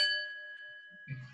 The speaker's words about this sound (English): I have my little gong here, my yoga gong, but we can talk about yoga in a second. I just want to hit it one more time.